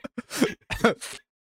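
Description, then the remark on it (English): A quick run of wet, nasal sniffling from a person: a couple of tiny snuffles, then three heavier, congested sniffs in a rough rhythm, with no talking. “It's just a bunch of water. It's just me like sniffling and like hot.”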